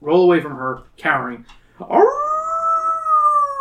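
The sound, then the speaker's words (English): A person imitates a dog howling: two short, yelping vocal bursts, then a long howl that swoops upward and holds steady, loud. “It's just howl, but I did the howl.”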